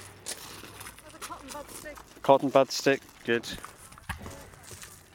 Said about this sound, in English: So this is the gentle sound of litter pickers crunching across